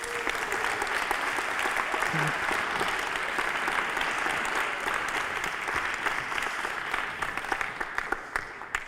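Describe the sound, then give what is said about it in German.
A live audience applauds itself on stage steadily for several seconds, a dense, sustained wash of clapping with scattered louder claps near the end and no speech. “Ja, also Applaus für euch selbst.”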